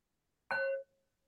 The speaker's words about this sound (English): And what's the feeling tone of hearing the bell ring?